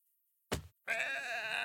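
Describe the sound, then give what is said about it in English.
A voice imitates a baby goat's bleat: a brief sharp burst, then a sustained, wavering, high-pitched bleating cry, loud, with no other talking. “It sounded like a baby goat being beaten.”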